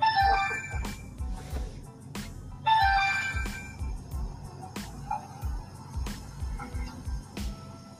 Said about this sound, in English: Somebody's ringing my phone. I don't know who that is, but let's just see. Let me just hang up.